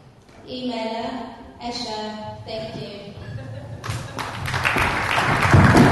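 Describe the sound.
A speaking voice is followed by a burst of audience applause for a presentation at an evening event in the last two seconds, a dense crackle of many hands clapping that swells louder toward the end.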